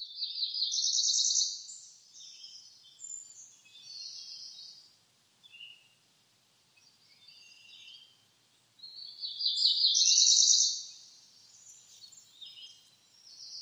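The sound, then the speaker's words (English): A cerulean warbler sings two bright, buzzy, high-pitched phrases several seconds apart, with softer scattered notes in between. The song is clear, with no voices or other noise. “That's the cerulean warbler.”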